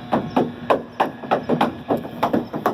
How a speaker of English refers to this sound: Sadly, there's no water in the slide. You can hear the cow's hooves clattering along, and you don't get to see the cow actually make it to the bottom of the slide and kasploosh into the water.